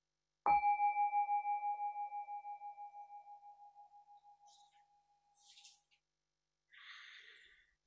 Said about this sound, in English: So let's enjoy that now as we listen to the bell.